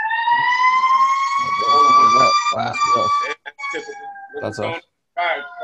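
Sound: fire truck sirens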